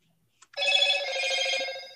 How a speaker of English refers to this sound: What the fuck was that? Sorry. I forgot I put my ringtones on before I go to bed. It's literally the only time I ever have a ringtone.